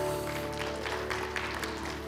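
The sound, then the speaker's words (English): An audience at a church service claps together in steady, dense applause to thank the worship team, filling the whole moment at an even level, with a faint low hum from the room underneath and no voices. “Can we give them a hand clap just to thank them?”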